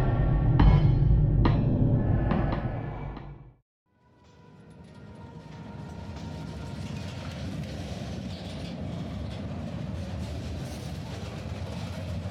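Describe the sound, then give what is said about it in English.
A train with a sleeping car and a livestock car carrying horses rumbles heavily along the rails with a few sharp clacks, briefly drops out, then returns as a steady, broad rushing roar of wheels and carriage noise. “It lay much further up the train than his own car, practically on top of the livestock car carrying the driver's horses,”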